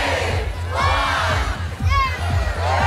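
A large crowd in Petersfield shouts together loudly and steadily, counting down to the switch-on of the town's Christmas lights, many voices rising and falling in unison before breaking into cheers.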